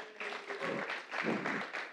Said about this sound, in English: Today is a baptism Sunday. So excited for that. One person's clapping. Yeah, baptism Sunday.